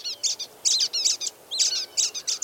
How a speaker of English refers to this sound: We're hearing the calls of brown-headed nuthatches moving through the tall, longleaf pines of the Apalachicola National Forest in Florida.